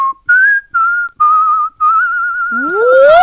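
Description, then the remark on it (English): Someone whistles a pop-style melody, a run of clear sustained notes with slight wavering vibrato, ending in a rising, breathy swoop. No one speaks. “Do you want to whistle that?”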